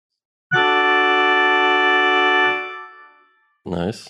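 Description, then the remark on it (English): An electronic keyboard sounds one loud, steady chord held for about two seconds, then it fades away and a short spoken voice follows. “I got a keyboard. Okay, let's hear it.”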